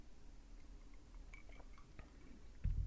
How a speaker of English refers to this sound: and I'm back at the spoonful of sugar mug, everybody, so we're really geared up here for the 50th episode, and let me go ahead and take the first sip.